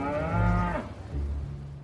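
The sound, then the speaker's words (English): A cow on Lucy and Desi's ranch moos loudly, one long drawn-out low call that tapers off, followed by a second, lower moo. “Eventually, the house did become a ranch. They got roosters, a pig, and a cow.”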